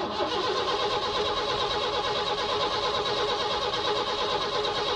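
A car engine churns and cranks steadily as someone tries to start it, a loud, continuous mechanical whir that holds for the full five seconds with no talking.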